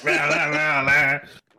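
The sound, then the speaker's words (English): A single loud throat clearing, voiced as a drawn-out, buzzing groan that holds for just over a second before trailing off into a soft breathy rasp. “Let me clear my throat.”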